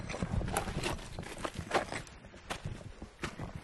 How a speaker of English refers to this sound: You see, those are very dry footsteps.